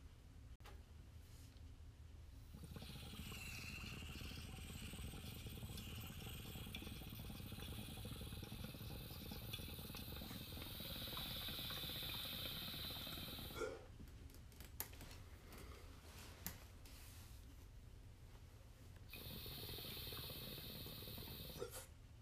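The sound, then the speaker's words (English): A steady, roaring hiss of a blowtorch flame, used to heat a dab, runs continuously for several seconds, fairly loud, then cuts off briefly before resuming for a final stretch. “For those of you listening at home, there's going to be a brief pause for the torch.”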